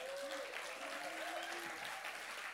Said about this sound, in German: Können wir noch einen Applaus geben für die Front Row?